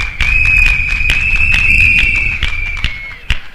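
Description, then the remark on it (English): An audience, counted in to three, blows whistles as loud as they can together in one sustained, shrill, high-pitched tone lasting about three seconds, with scattered claps, shouts and crowd noise underneath, ending with a few sharp bursts. “I may give you later on in the message opportunity to blow that whistle again”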